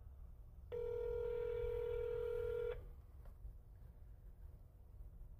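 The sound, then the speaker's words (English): A single steady electronic phone ring tone sounds for about two seconds, then cuts off into quiet, low background noise with no answer and no voices. “He ain't answering,”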